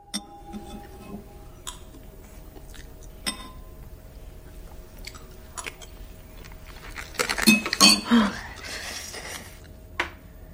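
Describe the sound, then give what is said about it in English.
Glass crunches between teeth in a bowl of soup: sparse clicks and small ticks at first, then a louder cluster of gritty crunching near the end, with no one talking. “So when she's chewing on glass in the soup, where did that come from?”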